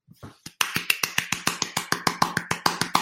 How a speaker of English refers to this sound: You clapping for yourself? No, I'm clapping for the purpose of the podcast.